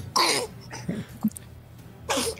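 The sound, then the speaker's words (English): A person sneezes: a sharp, breathy burst at the start, a few small sniffs and rustles, then a second hissing burst at the end. There is no talking. “Bless you, child.”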